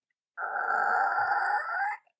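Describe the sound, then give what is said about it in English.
A single drawn-out vocal creak, a voice imitating a door swinging open for guests to come in: steady and nasal for about a second and a half, rising slightly in pitch before cutting off, with no other sounds. “do you want to do like a sound, like a, like we're opening the door for our guests to come in?”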